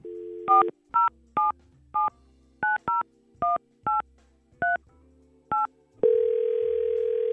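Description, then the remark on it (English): A brief tone, then about ten crisp touch-tone keypad beeps dialed in quick, slightly uneven succession, followed by a steady phone line tone with faint hiss. No one speaks. “Maybe we can get her on the phone and see if there's a reason why she's been MIA.”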